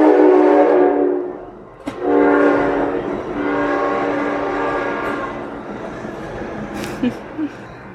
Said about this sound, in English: Maybe that's a sign from the universe. The train's just gone by.